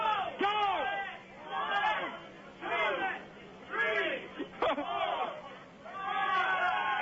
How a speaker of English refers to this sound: On your mark, you got to do 5. Set. I want you to cheer him on. Let's go, fellas. Go!